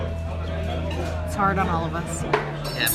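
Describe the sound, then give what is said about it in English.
A few sharp metallic clinks and clatters of cutlery being dropped ring out over a steady low hum and muffled background chatter. “Well, they're dropping the cutlery and everything.”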